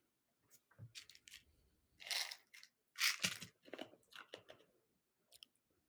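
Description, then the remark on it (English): Loud crunching as something is bitten and chewed, with several sharp bursts of crushing in an irregular rhythm and brief pauses between bites. No one speaks. “Can you hear like the crunching?”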